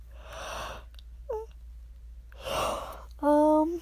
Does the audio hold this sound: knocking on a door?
no